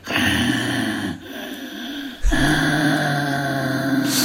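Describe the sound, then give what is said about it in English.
A voice imitates a man who breathed heavily while driving a car: two long, loud, noisy rasping breaths with a brief pause between them, breathy and hoarse, with no words spoken. “And all I remember was this guy breathed very heavily and it terrified me.”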